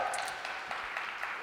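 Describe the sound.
A steady wash of audience applause, dense and continuous, with a murmur of crowd voices mixed in, heard at a moderate distance.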